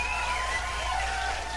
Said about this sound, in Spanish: Muchísimas gracias, carnal, un pinche aplauso.